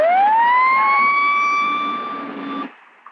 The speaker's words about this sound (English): Sir, you're still hearing this siren? Negative. Negative on the siren. Bravo, K1. Sound your siren.